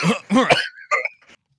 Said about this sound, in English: Are you okay over there? Sorry, I had the cough little, in my chest. A little tickle.